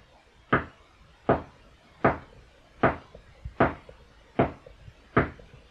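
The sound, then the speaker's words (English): Slow, evenly spaced knocks on a wooden door, seven firm raps about a second apart, clear with quiet pauses between them and no talking. “If you go up to a door and you knock 9 times”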